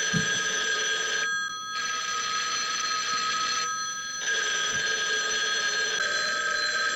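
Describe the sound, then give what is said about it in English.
A telephone bell rings loudly and continuously in two long bursts separated by brief pauses, a bright metallic trill filling the whole recording with no talking. “All these goddamn phones. Turn off the goddamn phone. Why are all the phones ringing?”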